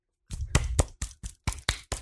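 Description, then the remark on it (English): A soft, polite golf clap: about eight light hand claps at a steady, unhurried pace, each a short muffled pat with no voices. “Is it like a golf clap? Like this.”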